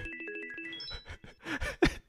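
signal or alarm, phone alarm ringtone

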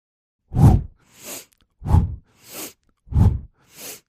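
human body sound, forceful breathing exercise

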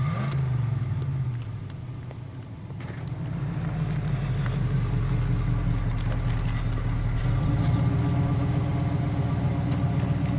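vehicle, vehicle engine idling

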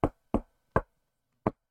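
impact, knocking on a desk

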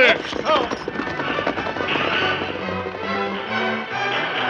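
sound effect, horses galloping hoofbeats

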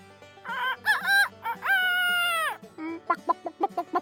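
bird, rooster crowing

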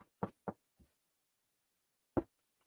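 household object, knocking

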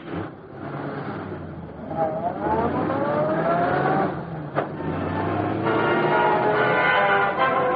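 vehicle, car driving away

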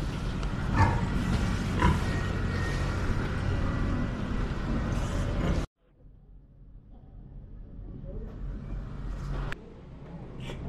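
animal, pig grunting

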